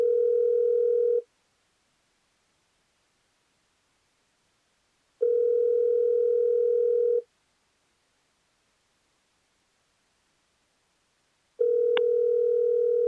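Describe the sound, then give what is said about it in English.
Three rings of an outgoing phone call's ringback tone, a steady electronic buzz of about two seconds each with long silent gaps between; the third ring is cut short by a click as the call goes to voicemail. “Maybe I'll call.”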